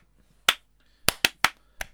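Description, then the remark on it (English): Sharp hand claps with no talking, demonstrating background hand claps on Motown records: a single crisp clap, a short pause, then five more in a quick, slightly uneven run, each loud and snappy. “What's your favourite hand clap in all the music? The one I just did.”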